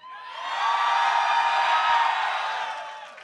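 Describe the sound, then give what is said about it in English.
An audience cheers and whoops, a dense, bright roar of many voices that swells quickly, holds loud for a couple of seconds, then gradually fades. No one speaks over it. “You guys are gonna cheer for a self-shill like that?”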